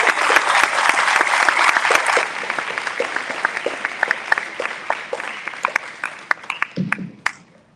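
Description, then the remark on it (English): A crowd at a school address applauds parents and students, clapping loudly and steadily, the dense applause thinning out over several seconds into scattered individual claps before fading, with a brief murmur of voices near the end. “And given the time and effort you put in all year long, can we give our parents and students a big round of applause?”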